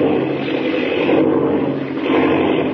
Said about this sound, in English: Jiminy, the plane. Spinning, it's out of control.